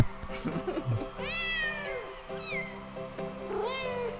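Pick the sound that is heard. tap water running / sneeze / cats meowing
cats meowing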